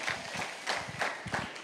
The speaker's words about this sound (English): Come on, let's give our dads just one big hand clap today.